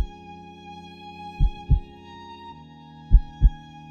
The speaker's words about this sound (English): Her heart beat gently, like a tiny drum. My heart beat in rhythm.